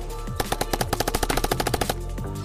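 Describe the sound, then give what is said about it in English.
A rapid burst of automatic gunfire from an assault drone, roughly fifteen sharp, evenly spaced shots over about a second and a half, with no voices over it. “As the assault drone in front of you continues to hail down bullets on you.”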